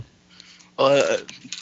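Dice clatter briefly across a hard surface in a quick, clicky rattle lasting about half a second, fairly loud, with softer background noise before and after.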